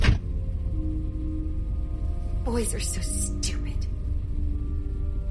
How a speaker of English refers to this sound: The guys hopped out of the car, shutting their doors quietly behind them. They left the engine running.